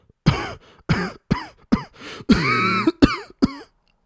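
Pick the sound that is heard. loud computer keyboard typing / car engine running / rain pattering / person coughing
person coughing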